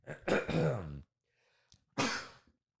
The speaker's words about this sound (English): You sneeze? I did. Oh. That was random. Bless you. Thank you. Yeah. Is that the first sneeze?